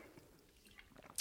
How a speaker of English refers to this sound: I have to take a sip of water.